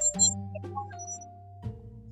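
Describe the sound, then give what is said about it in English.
A mellow doorbell-style chime rings out in a few struck tones, each note ringing and slowly fading into the next, clear with no talking. “So, with that being said, I guess the bell is time to sign off.”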